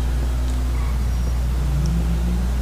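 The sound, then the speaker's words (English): A steady low engine drone fills the whole stretch, with a faint rising hum as a car seems to pass, as traffic drives by on a road; no voices present. “This guy's all over the road. All right, wait for this traffic to go by.”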